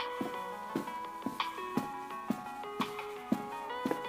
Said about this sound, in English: Shit, that's my phone. Might be something to do with the exhibition. I'll get it.